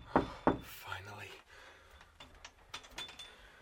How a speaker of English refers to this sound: Just when I could bear it no longer, Uncle Percy knocked on my door.